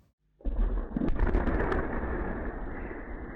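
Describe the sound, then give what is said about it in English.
A drone believed to be Ukrainian explodes at the main base for Moscow's long-range bombers in Russia, hundreds of miles from the Ukrainian frontier, captured by surveillance video. After a brief silence, a loud explosion erupts suddenly and rolls into a deep, sustained rumble that fades only slightly over the next few seconds. No voices. “Surveillance video captured this explosion on Monday in Russia, hundreds of miles from the Ukrainian frontier.”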